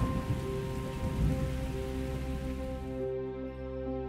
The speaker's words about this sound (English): Soul dances at the thumping of raindrops.